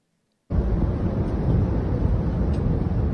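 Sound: wind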